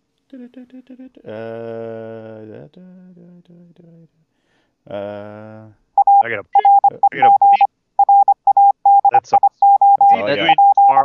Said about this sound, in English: That's just Morse code. Jesus Christ, turn that off.